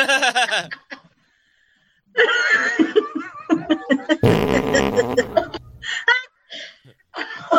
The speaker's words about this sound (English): I'm kind of having... I just farted.